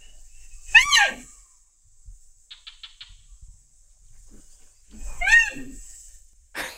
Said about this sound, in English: And then it's the most vocal of rhinos. And so it will sing to you. And the researchers compare the voices, the sounds that it makes to whales and dolphins. We actually have some sounds of the Sumatran rhino. Let's have a listen.